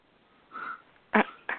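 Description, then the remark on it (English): A short, loud, guttural belch bursts out after a faint low murmur, followed moments later by a second, briefer throaty burst. No one speaks. “Yeah, I was about to make a good vegan joke, and he has to belch.”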